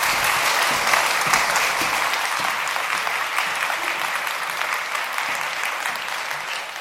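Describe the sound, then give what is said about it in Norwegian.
A crowd claps steadily in sustained applause, a dense wash of many hands at fairly even loudness that tapers slightly toward the end, with no talking. “Applaus.”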